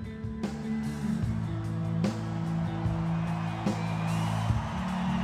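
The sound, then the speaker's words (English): A concert crowd cheers in a dense, continuous roar over steady low droning tones, with a few sharp thumps breaking through at intervals. “Can you hear the crowd?”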